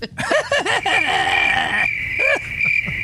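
A steady, high-pitched drone of crickets chirping runs through the whole few seconds, overlaid by several warbling, rising-and-falling vocal-like calls.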